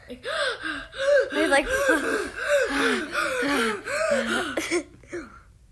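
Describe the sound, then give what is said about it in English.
A person imitates the heavy, frightened breathing of an actor in the second Jurassic World film: a rapid, steady run of voiced, panting gasps, fairly loud, lasting about five seconds before breaking off. “But I feel like in the second Jurassic World, he's way more, scared. Like, heavy, heavy breathing and stuff like that.”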